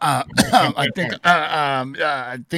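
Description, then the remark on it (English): A loud voice makes a quick exclamation and then mimics a couple of coughs and throat clearing, voiced and drawn out rather than sharp, natural coughs. “Oof. Cough, cough.”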